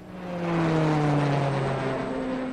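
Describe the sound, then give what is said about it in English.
A loud, steady airplane engine drone swells in at the start and holds, its low hum gliding slightly downward in pitch, with a broad rushing noise over it and no voices. “And soon I was prepping and planning, taking the necessary vaccinations, filling out the paperwork, and boarding the plane alongside the group.”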